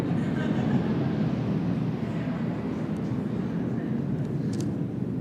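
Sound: airplane passing overhead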